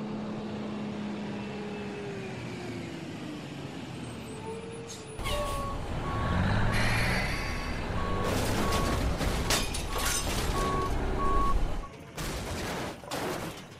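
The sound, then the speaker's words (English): A truck's engine drones as it approaches, heading north on Main, then a sudden loud crash erupts into a long stretch of clattering impacts and crunching debris while a steady electronic beep repeats underneath. “Incoming truck! North on Main.”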